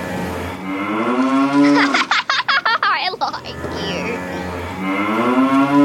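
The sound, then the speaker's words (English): Deep, drawn-out cow-like moos from a large sea animal with a giant flipper and whiskers, loud, with a choppy, giggly burst and brief speech between two long lowing calls. “Cows don't have whiskers.”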